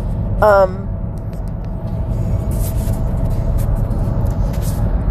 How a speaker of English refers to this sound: There's a train next to me, so if you can't hear me, that's why.